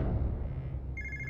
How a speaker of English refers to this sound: Regina's younger brother Omar hears the phone ring